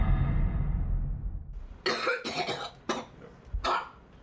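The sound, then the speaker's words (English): Low muffled rumble, then a series of four or five harsh, wet-sounding coughs in quick succession, fairly loud, as a patient coughs up bloody sputum into a clear cup for a test. No talking. “So I coughed up a sputum in a cup, and it was bloody, of course.”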